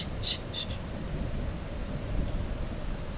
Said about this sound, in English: The rain is going pretty heavily.